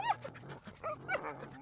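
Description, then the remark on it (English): A dog whimpers in a few short, high, wavering whines, moderately loud, with brief pauses between them and no talking. “The whimpering sounds again.”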